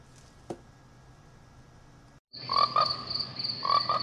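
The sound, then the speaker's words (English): In the trailer for the American International Pictures film Frogs, after a quiet stretch with a single faint click and a brief drop to silence, a loud chorus of frogs bursts in, croaking and trilling in dense, overlapping, rhythmic pulses with no talking. “American International Pictures presents Frogs, the story of the day nature strikes back.”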